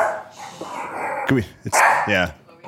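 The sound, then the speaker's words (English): Two or three short, sharp barks from a dog cut through a noisy, busy background, with a brief gap between them. “The dogs don't like the babies.”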